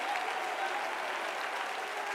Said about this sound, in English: Come on, if you believe there's victory, come on, if you believe there's victory, clap your hands and shout. Do what that choir said to do. Come on, shout. Come on, body of Christ, shout.